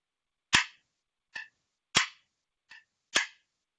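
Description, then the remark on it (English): Five crisp, sharp clucks from a turkey call worked with one hand, the thumb in the cavity on the back pulling it backwards, spaced about a second apart with no talking, louder snapping pops alternating with softer, slightly more tonal ones. “You put your thumb in the cavity on the back and you pull it backwards. You get that nice crisp cluck.”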